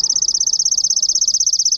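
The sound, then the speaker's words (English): A chipping sparrow's song: a fast, even, dry trill of high-pitched notes repeated at a steady rate, sounding almost mechanical and continuing unbroken for the whole clip with no voices. “Which one is this? Chipping sparrow.”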